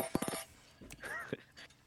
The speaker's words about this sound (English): You're just playing with cutlery.